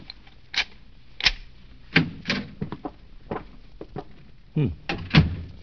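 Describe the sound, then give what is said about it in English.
A series of sharp metallic clicks and clunks, irregular and fairly loud, like a key rattling in the lock of a hotel room door before it is pulled open, with no one speaking. “I guess I'd better unlock it.”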